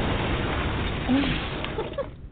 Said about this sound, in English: If you do get bounced, I have to give you an explosion sound.